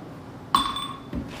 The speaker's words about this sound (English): Pull out our glass here, do a couple fresh ice cubes.